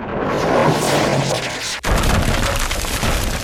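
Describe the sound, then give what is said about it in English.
Loud, continuous cannon fire from cannons atop roofs, with heavy crashing and rumbling debris as cannonballs shatter into boat houses in fog, a sharp cracking impact breaking through about halfway before the dense barrage roars on. “In the heat of their argument, cannonballs whizzed through the air, blowing holes through the fog and shattering into the boat houses.”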